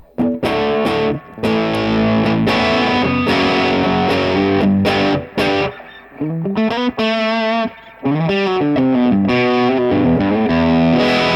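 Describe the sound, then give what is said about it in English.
A distorted electric guitar plays loud, sustained chords and bending lead notes through the amp's dirty channel, with a wash of reverb trailing each phrase and brief gaps between bursts. No one speaks. “Maybe back up on the reverb a little bit for the dirty channel. Because it's very reverby, isn't it?”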